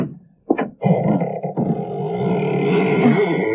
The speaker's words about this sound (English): Doesn't sound as though that door had ever been opened. Well, a little oil on the hinges will fix that, all right.